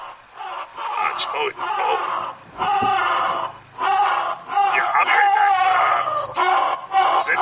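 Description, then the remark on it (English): A creature shrieks and screeches in loud, ragged bursts, one harsh cry after another with brief gaps, piercing for several seconds. “It's making a lot of this screaming, but it might not have a mouth.”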